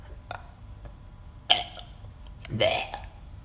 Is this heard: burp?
yes